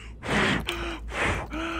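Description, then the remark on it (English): Two forceful, breathy blows in a row, each a rush of air ending in a short voiced hum, with a brief pause between them: a person blowing breaths into a hole in a gelatin cube as mock CPR. “And I start breathing into the hole, that, like, because it left, like, a little trail.”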